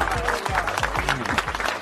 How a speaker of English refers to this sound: All right, give yourselves a round of applause.